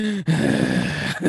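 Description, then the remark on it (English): Someone imitates heavy, open-mouthed breathing, as if staring into another person's eyes with mouth gaping: loud, raspy gasping breaths drawn out over a second or so, with brief catches between them. “Don't stare at the other person directly in the eyes with your mouth gaping, breathing heavily.”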